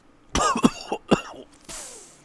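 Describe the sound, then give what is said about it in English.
A harsh fit of about four coughs in quick succession from a person retrohaling cigar smoke, followed by a long breathy exhale or hiss as the coughing settles. No one speaks. “Boy, you know, wow, you're having a run of like retrohales that you're coughing on.”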